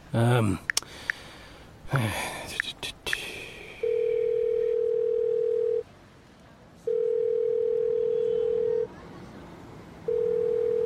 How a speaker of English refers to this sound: Pick up the bloody phone.